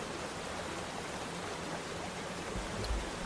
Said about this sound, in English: So the sounds of the waterfall and the underground river fade into memory.